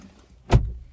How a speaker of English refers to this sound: gets out of the car.